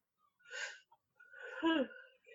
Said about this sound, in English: Oh, now you're yawning. Now she's yawning. I can't help it, they're contagious.